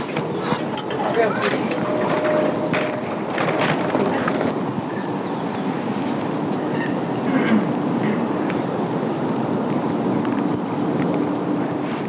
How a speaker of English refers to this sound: Can I just look and record some sound of the rain?